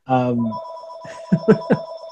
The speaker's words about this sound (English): Oh, that's the Writers Fest phone. Let me just answer that.